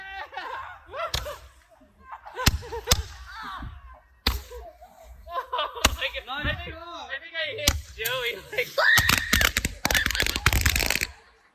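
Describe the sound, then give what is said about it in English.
A boy lets out a loud, high-pitched scream that sounds like a girl's scream, amid a chaotic jumble of laughter, excited voices and several sharp slapping cracks, growing more frantic toward the end. “Now, the loud scream that sounded like a girl scream was one of the boys.”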